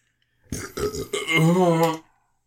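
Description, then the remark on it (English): A loud, drawn-out burp after a Pepsi and spicy bean combination, lasting about a second and a half, starting with a few choppy croaks and then rolling into a sustained, low, gurgling belch before cutting off. “It's a Pepsi spicy bean combination there.”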